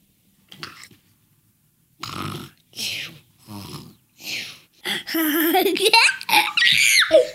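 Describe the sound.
A child lying on the floor pretending to sleep fakes snoring with a few rough, breathy snorts in a steady rhythm, then breaks into loud, high-pitched squealing giggles.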